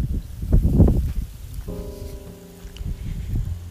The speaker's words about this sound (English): So, once again, I have a windy day to be recording, but hopefully this will be a little bit better recording than my last recording on my other show, because I have the wind at my back. So hopefully my body is blocking a lot of the extra wind noise.